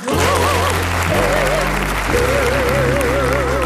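studio audience applause

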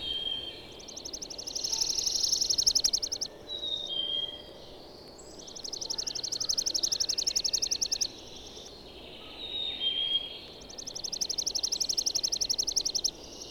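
chipping sparrow song

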